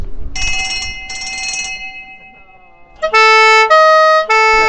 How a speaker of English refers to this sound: That was a quick demonstration of the audible sounds on this Sunbeam Tiger. We've got the Winkworth bell on the front and a quick two-tone under the bonnet as well.